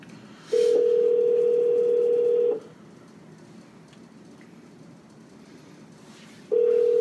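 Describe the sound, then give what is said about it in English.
A steady, clear telephone tone hums for about two seconds, falls silent for several seconds, then starts again near the end, as a phone call is being placed. No one speaks. “So I'm going to go ahead and get him on the phone.”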